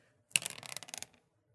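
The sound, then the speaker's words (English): A quick clatter of dice tumbling across a table: a sharp first hit, then a rapid rattling series of small clicks that fade out in under a second, fairly loud. “I wish that dice I had earlier that was doing better. This one.”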